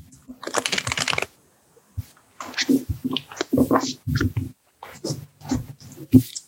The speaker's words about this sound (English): Let's shuffle. Let's each pull a card and then you can tell me if you want to go first or second.